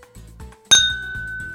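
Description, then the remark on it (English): A single bright clink of glasses, one a snifter with a golden caramel-coloured spirit poured in, touching in a toast. The sound is clear, and its ringing tone lingers and fades over the next second. No one speaks. “Let me say cheers.”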